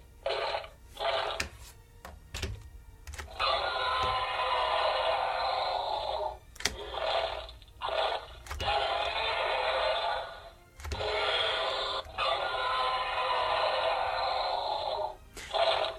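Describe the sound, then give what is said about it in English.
A Mattel electronic toy dinosaur plays a series of harsh, tinny roars and growls in long bursts, broken up by sharp mechanical clicks and crunching snaps between them. No one speaks. “So yeah, there's definitely quite a few different roar options, crunches, and all kinds of nasty stuff going on there.”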